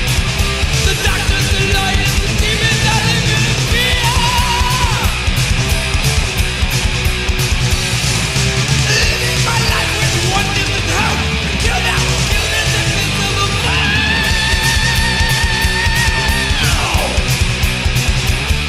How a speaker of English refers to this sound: And I'll even forgive him the … scream.